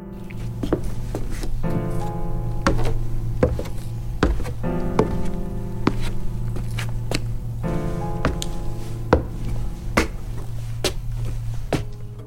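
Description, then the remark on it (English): Heavy sledgehammer blows smash walls, a bed and furniture again and again at an uneven pace, each sharp crunching impact ringing out over a steady, low droning tone that hums underneath throughout. “I keep swinging the sledgehammer until the walls barely exist.”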